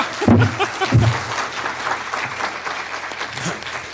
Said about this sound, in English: He wants to applaud. He thinks that's an applause line.